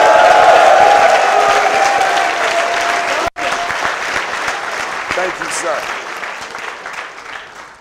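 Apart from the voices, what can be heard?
audience applause and cheering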